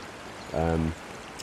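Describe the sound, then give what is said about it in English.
Steady rushing water flows continuously, a broad wash of a river spilling over a fairly wide weir, with a brief voice breaking in partway through, as someone wades shin-deep toward the weir to fish. “So I'm just a shin depth as I'm approaching up into this this weir. It's a fairly wide weir, so I'm kind of in the middle, so I might just start on the right and walk my way across.”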